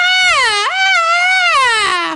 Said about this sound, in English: It might have been a stock thing, though. It was a Wilhelm scream. I just found a stock scream. It wasn't one of those, but you know. No, it had just been one of a recording from a scream queen or something. This is what it sounded like.